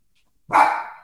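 A single loud dog bark bursts out after a short silence, sharp at the onset and trailing off over about half a second.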